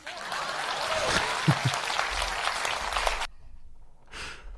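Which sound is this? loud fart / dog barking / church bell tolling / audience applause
audience applause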